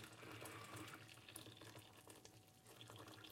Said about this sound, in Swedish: Så, och så tar vi vattnet den här. Och nu var det varmt som fan. Häller vi hela här så där, ja.